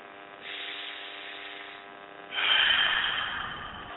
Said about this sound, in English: And we're just going to do some breathing.